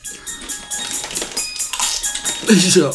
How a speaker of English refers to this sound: You can't eat on the mic, dog.